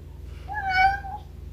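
A single drawn-out cat meow, rising then falling in pitch, clear over a faint low background hum, with no talking.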